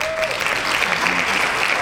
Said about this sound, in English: You have to wait till the claps start. Stop. Then talk.